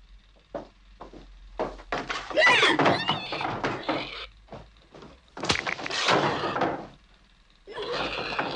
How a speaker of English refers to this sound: Kirk is beaten to death in the doorway with a hammer, pulled into the room, and Leatherface slams the metal door shut.